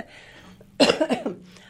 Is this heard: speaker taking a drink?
no